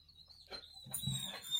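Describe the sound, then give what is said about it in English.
A female puppy whines in thin, high-pitched whimpers that rise and waver over a second or so, fairly faint, with no one talking. “Puppy. She's whining.”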